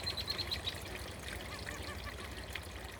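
A steady, gentle trickle of orange-tinted leachate runs over rocks in a shallow ditch at a former New York City landfill being rehabilitated into a park, continuous, with a few brief high chirps of songbirds and laughing gulls near the start.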